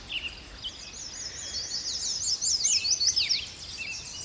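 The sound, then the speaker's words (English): Several songbirds sing at once at Martin's Landing in the Fort Boise Wildlife Management Area: mostly song sparrows and yellow warblers, also black-headed grosbeaks, trilling and warbling in quick, high-pitched phrases that overlap, with a soft steady hiss of background noise and no talking. “Mostly song sparrows and yellow warblers, but also black-headed grosbeaks.”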